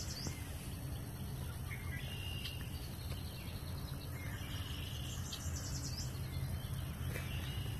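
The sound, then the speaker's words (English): Birds chirp and twitter faintly at dawn over a steady insect drone and a low outdoor rumble, with calls scattered throughout and no voices. “Listen to the sound of the birds for a few seconds, and then I'm going to read Psalm 43.”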